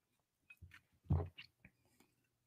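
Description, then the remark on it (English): A quiet sip of whiskey: a few soft wet slurps and lip smacks followed by a gulping swallow, with no talking. “But I am going to take a sip, see how I feel.”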